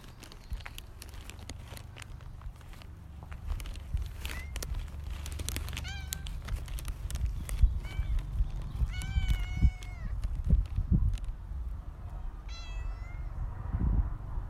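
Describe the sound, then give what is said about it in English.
A cat named Lucy meows several times, short rising-and-falling cries spaced a second or two apart, over a steady low outdoor rumble with occasional clicks and rustles, on a sunny day. “So I've now found out the cat's okay. So I was just checking on her well-being.”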